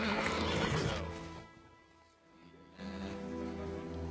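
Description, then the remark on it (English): A horse whinnies loudly and shrilly, the call trailing off into a brief lull before a second, steadier neigh rises and carries through to the end. “What's the horse's name?”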